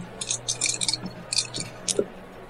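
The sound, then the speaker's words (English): Dice clatter and rattle in a few quick bursts of bright, clicky knocks, pausing briefly before tumbling again and settling. No voices are heard. “I'll just roll my dice.”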